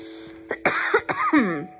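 cough

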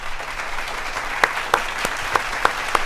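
crowd applauding

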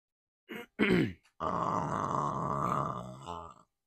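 burp

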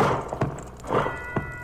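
horse hooves clip-clopping

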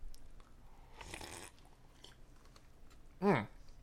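sipping root beer

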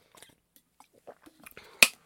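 sipping water

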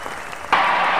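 brief applause

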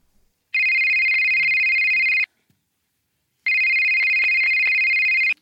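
mobile phone ringing

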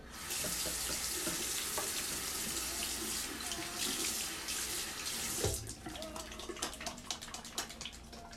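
running tap water

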